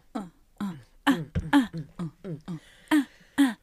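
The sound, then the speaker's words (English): A rapid series of about ten harsh coughs and throat-clearing bursts, fairly loud, coming in an uneven rhythm with brief gaps between them and no talking. “I'm dancing to your coughs.”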